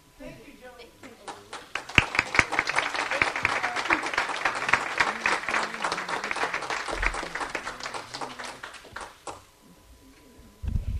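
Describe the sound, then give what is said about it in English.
An audience at a meeting breaks into loud, steady applause for the nominating committee lasting about seven seconds, a dense patter of many hands clapping that then fades out, with some talking before it begins. “And let's have a round of applause for our nominating committee.”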